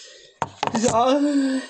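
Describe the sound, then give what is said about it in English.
A few sharp metallic clicks and knocks as someone turns a key to unlock a door, followed by someone humming or singing a sustained note. “Yeah, you keep singing to our beautiful audience while I unlock this door quickly.”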